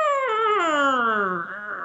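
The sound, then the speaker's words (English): Someone imitates the angry growl of a cat in a kennel: one loud, drawn-out yowl lasting about two seconds that slides steadily downward in pitch, with no other talking. “And I'd just stand there and wait for her to stop the growling.”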